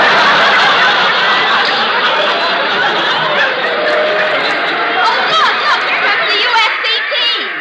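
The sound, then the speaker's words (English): A dense, steady wash of stadium crowd chatter at a game, as the USC team comes running past, fills the whole clip, many overlapping voices murmuring and calling out at a constant loud level, with occasional snickers and brighter shouts rising near the end. “Yeah, listen to that crowd.”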